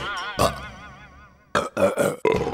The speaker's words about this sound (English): And if you ingest things that have a lot of gas in them, like soft drinks, well, that gas will build up quickly. And, you guessed it, you'll burp it out pretty fast.